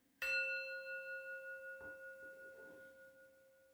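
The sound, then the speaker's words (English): A single bell is struck once to open a meditation circle and rings on with a clear, sustained tone that wavers gently as it slowly fades. It stands alone, with no voices. “So before we go any further today, let's go ahead and open our circle by ringing the bell.”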